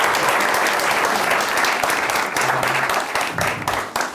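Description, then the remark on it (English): Steady, loud audience applause as climber Tommy Caldwell is brought up on stage, a dense wash of many hands clapping that holds for about four seconds and starts to thin near the end, with a few faint voices mixed in. “Everyone can give him a big round of applause.”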